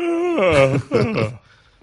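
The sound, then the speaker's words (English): A yawn sound effect played on a sports talk show in response to the Arkansas at South Carolina game: a long, drawn-out yawn in two breathy, moaning swells sliding downward in pitch, fairly loud, then trailing off into quiet. “Can we get the yawn?”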